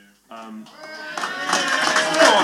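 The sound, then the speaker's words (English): A voice speaks briefly, then an audience in Bucharest breaks into applause that swells quickly into dense, steady clapping, growing louder toward the end with other voices mixed in. “We need to applaud you boys for bringing this over to Bucharest for a start.”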